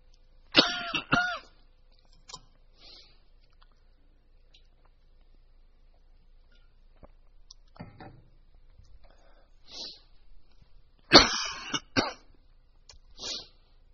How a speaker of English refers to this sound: This is awful. This happened to me yesterday morning. Nearly at the same time, I think. Maybe it's just like my 10:30 coughing fit or something.